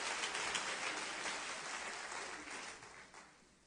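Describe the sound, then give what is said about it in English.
An audience claps their hands as they are seated after a prayer at a church service, a dense, steady burst of applause, a crackling wash of many overlapping claps that holds fairly even and then gradually thins and fades toward the end. “Can we clap our hands one more time as we're seated in the name of the Lord?”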